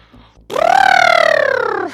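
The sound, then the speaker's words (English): A person's voice imitates an elephant trumpeting as a character's 'trumpet' ability, used to draw attention to itself: one loud, sustained, buzzy cry that swoops up, then slowly sags in pitch over about a second and a half before cutting off. “So he's going to just go full out elephant panic mode and just trumpet them in the face.”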